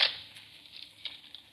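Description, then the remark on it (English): Faint rustling and crackling of a man carrying a rifle pushing through brush, starting with a sharper snap of foliage, then scattered soft swishes and light patters that come and go. “Yeah, I hear it. Someone coming through the brush.”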